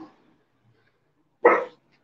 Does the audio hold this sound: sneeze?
no